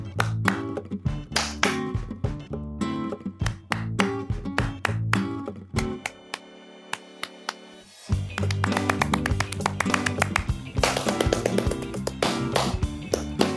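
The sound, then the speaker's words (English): Sharp hand claps repeat in a quick, steady rhythm over a droning tonal backing, thinning out briefly midway before the loud, dense clapping returns and continues to the end. “This is so hard because I hear you clapping as you're clapping.”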